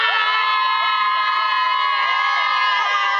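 A crowd of excited women cheers and shrieks continuously after a show at the Crazy Horse in Paris, high-pitched voices overlapping in a loud, sustained wall of squeals and whoops with rising and falling cries throughout.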